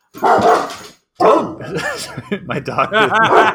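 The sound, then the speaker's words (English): A dog, reacting to a Cogsworth voice impression, barks loudly in a quick series of sharp barks, with a short pause after the first burst, then continues with excited, yelping barks. “My dog does not like Cogsworth's voice. You excited the beast!”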